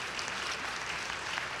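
An audience applauds in a steady, dense wash of clapping that stays at an even, moderate level throughout, with no voices standing out.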